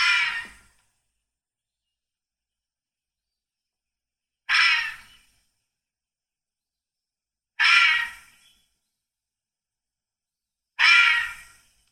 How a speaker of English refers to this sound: All right, here's the Fisher Cat. Hear the Fisher Cat. Here's the Fisher Cat.